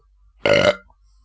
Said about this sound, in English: I thought I'd just belch there, just to let you know that I'm drinking a beer, because I'm not at work tomorrow, so I thought, you know, I'll have a beer while I'm...